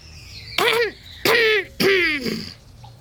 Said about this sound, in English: I coughed. Nobody stirred. I coughed. Again.